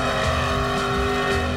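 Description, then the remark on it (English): Two cars, a Ford and a Chevy, pull against each other in a tug of war, engines roaring at high revs in a steady, sustained strain, loud, with a harsh tonal drone and a hint of tire noise underneath, and no one talking. “That was a Ford versus Chevy battle.”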